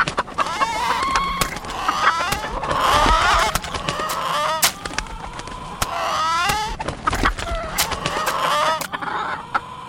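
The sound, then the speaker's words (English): A crowd of chickens escaping from a failing coop cluck and squawk agitatedly, overlapping calls filling the scene with busy, chaotic energy and occasional sharp bursts throughout. “All the chickens are escaping!”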